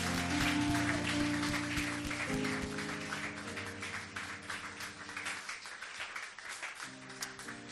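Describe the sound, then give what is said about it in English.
A church audience claps hands loudly and continuously after a prayer, a dense burst of applause over sustained organ or keyboard chords, tapering slightly toward the end. “Why don't you clap your hands as hard as you can?”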